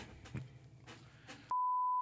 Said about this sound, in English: No, I'll beep that out. I gotta remember all the shit I'm gonna beep out.